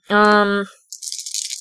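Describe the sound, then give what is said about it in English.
A voice lets out a drawn-out sustained tone, then after a short pause a large handful of dice, rolled in a Star Wars tabletop game for the Millennium Falcon's shots, clatter and rattle in a bright, rapid, uneven burst of clicks lasting under a second. “That's a lot of dice.”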